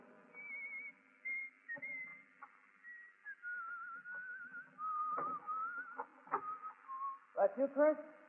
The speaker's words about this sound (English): He doesn't whistle that well.